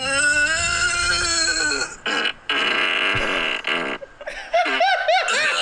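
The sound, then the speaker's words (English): A long, loud, droning fart with a buzzy tone, broken into a few raspy bursts, then a wavering, pained moan from a voice at the end, clear. “Great fart.”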